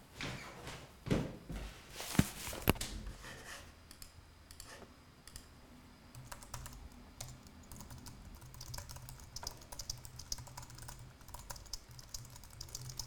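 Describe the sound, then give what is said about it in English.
Someone types steadily on a computer keyboard, with a burst of louder clicks near the start and then a continuous patter of keystrokes with no talking. “I don't like this keyboard, but my better keyboard is on the toaster right now, drying out.”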